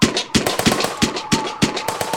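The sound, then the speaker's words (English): Gunfire aimed at an aircraft rattles in a quick series of about eight sharp, loud cracks at a slightly uneven pace, each burst broad and harsh with a brief ringing tail, and no voices. “Oh, no, they're shooting at me.”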